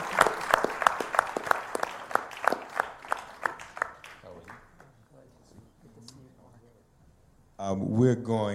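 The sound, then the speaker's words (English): An audience applauds a presenter again after his talk at a discussion event, clapping in a fairly steady rhythm, strong at first and dying away after a few seconds; a quiet lull follows before a voice starts speaking at the end. “Give him a round of applause again, please.”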